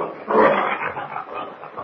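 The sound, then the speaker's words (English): A grizzly bear in a cave growls wildly and without pause, a rough, rumbling snarl that swells loudest near the start and keeps churning for a couple of seconds, with no voices. “As he neared the entrance, he could hear the wild growling of the bear.”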